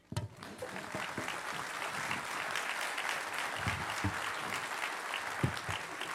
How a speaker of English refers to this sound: That was better than the golf clap earlier, so yeah, thank you so much for that. That's so good. Nice. It's what you get at the 18th hole, I think, this kind of thing.